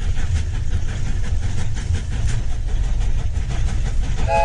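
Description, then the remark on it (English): A train rumbles past, a loud, steady low roar with rattling clatter that holds for several seconds, and a tonal horn-like note begins right at the end. “Yes, they're big fans of trains,”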